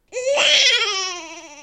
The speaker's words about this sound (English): I made an episiotomy incision, and with two maternal pushes, extracted the baby, who cried immediately.